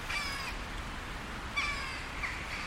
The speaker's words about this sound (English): Alright, that's a magpie up there. No, it's not. It's a hooded crow. Grey fucker with a black head in it.